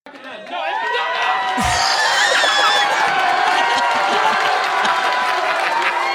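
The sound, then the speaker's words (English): A loud, sustained roar of an audience cheering and clapping hard for a man who has just said he is in a relationship, with whoops and shouts rising out of a dense wall of noise that holds steady for several seconds. “They went in on this guy and clapped so hard.”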